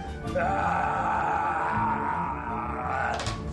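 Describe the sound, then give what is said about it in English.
A man voices a drawn-out, strained scream of pain for a wounded character hit for 28 damage during a tabletop role-playing game, rising sharply and holding a wavering pitch for about three seconds before cutting off. “Oh, yeah, he screams in bloody pain.”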